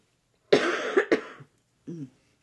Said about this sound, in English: Sorry, I've been having cold and I'm in a stage of lots of coughs. Right, she can't control it.